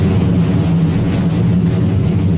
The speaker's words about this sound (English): We're sitting on the cable car now.